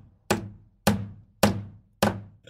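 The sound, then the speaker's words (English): Four loud, evenly spaced hammer blows from Chip hammering in a bar, each a sharp, bright strike with a brief ringing decay, repeating at a steady rhythm with no voices. “Chip starts hammering loudly in jealousy.”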